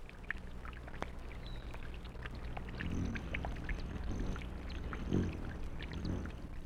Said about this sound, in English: How wonderful are the rhythms of the world. The birds. The rippling brook.